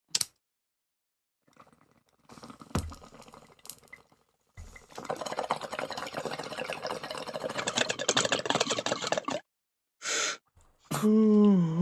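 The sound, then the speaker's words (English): A lighter clicks and flicks a few times, then a long, steady bubbling hiss of someone inhaling from a smoking bowl, followed by a sharp breath and a short voiced groan. “Now let's all light up our bowls. Lighters out, let's blaze it, bros.”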